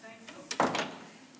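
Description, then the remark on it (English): A person closes a door, which swings shut with a short scraping sweep and a soft thud, followed by a brief rustling tail, heard over quiet room noise. “I'm going to close this door because someone might come in and get us.”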